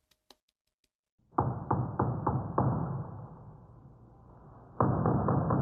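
A door downstairs being battered: a burst of heavy, booming blows in quick succession, a rumbling stretch, then another rapid flurry of loud thuds. No voices.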